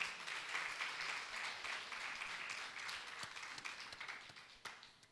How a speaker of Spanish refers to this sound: ¿Cuántos le pueden dar un fuerte aplauso a Dios?